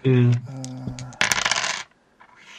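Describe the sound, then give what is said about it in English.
A handful of six-sided dice clatters briefly during a tabletop game: a bright metallic ring first, then a dense rattling burst of small hard pieces knocking together before quickly settling into quiet. “Let me see if I have enough dice here.”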